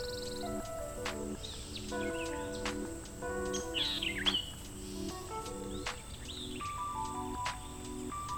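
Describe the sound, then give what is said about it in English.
Birds sing and chirp in an outdoor setting, with several bright, sweeping calls rising over a steady layered hum of background tones and insects. “Then the birds.”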